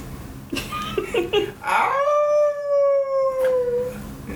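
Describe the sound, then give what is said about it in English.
Dogs, getting riled up, howl in a long, sustained, wavering cry that rises and holds for a couple of seconds, preceded by a few short yips and whines, fairly loud. “The dogs are getting riled up.”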